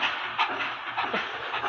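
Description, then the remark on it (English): A train pulling away, heard as a steady, breathy hiss and rumble with faint rhythmic chugging, moderately loud, with no one speaking. “Is that a hype train leaving the station?”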